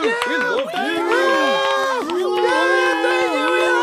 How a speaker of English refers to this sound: The crowd goes wild. They cheer and scream.